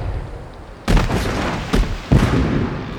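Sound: cannon fire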